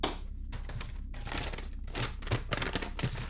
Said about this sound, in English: I've actually I got you something. Oh, really? Yeah, this box here. Can you see it over there? Oh, this one with the ribbon? Yeah, go ahead and open it.